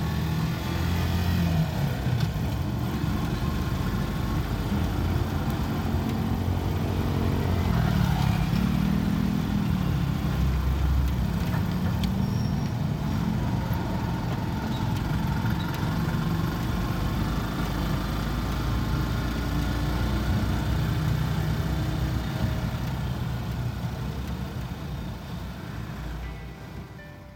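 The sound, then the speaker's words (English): Busy street traffic with many motorcycles, heard while riding in a motorcycle sidecar weaving through traffic past shops: a steady, dense rumble of engines idling and revving, continuous throughout and fading slightly at the end, with no clear talking. “We're riding through the streets, weaving in and out of traffic, going past all sorts of stores that are selling Christmas decorations and food, people in flip-flops, and lots of motorcycles.”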